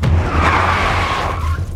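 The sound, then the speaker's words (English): A car's tires screech in a loud, sustained skid as the brakes lock up, the squeal holding steady for under two seconds over a low engine rumble, with no voices. “After locking up the brakes, he tells her that she's being stupid in response to her saying she's going to travel instead of go to uni for the first year.”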